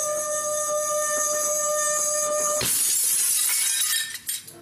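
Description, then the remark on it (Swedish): Two drinking glasses are set close together and the second glass is rubbed: a clear, steady ringing tone holds for a few seconds, then gives way to a harsh, bright squealing rub that fades out. No voices. “Och så sätter jag glasen nära varandra och sen gnider jag på det andra glaset.”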